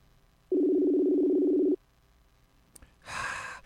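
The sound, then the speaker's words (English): A steady, fairly loud telephone tone sounds for a little over a second as a call is placed to a cell phone, then a faint click and a short breathy rush of noise. Nobody speaks. “I'm going to call your cell phone, darn it.”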